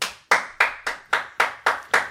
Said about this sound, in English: Mysterious stranger sitting in the room observing everything. Our first ever live audience. Oh, yeah. First ever. Clap.